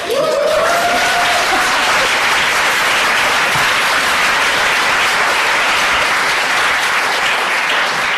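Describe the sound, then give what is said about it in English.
Loud, sustained applause from a large audience welcoming Rachel, Member of Parliament for Leeds West, a dense wash of clapping that stays steady for several seconds, with a brief whoop or cheer rising near the start. “So if you clapped, you have to vote.”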